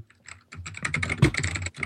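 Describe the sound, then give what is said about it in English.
Rapid clicking of keys on a mechanical DOS keyboard, a quick burst of loud clacks after a brief quiet start, with no talking. “Also, DOS keyboard. Shame on you.”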